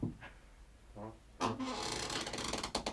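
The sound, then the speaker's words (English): A creaking chair groans with a short, pitched squeak, then settles into a longer, rough, grinding creak that strains on for over a second, with no voices. “Yours is like an old guy sitting in a well-worn chair.”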